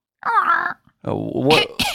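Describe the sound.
A voiced, groaning sound, then a short run of harsh, raspy coughs ending in two sharp bursts, close and fairly loud.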